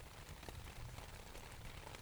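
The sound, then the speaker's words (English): Steady rain patters on a tent on a cold, rainy day, a soft continuous hiss dotted with small drop taps, even in level throughout with no voices. “You're in your tent. It's cold and rainy outside, but in here, you are toasty warm.”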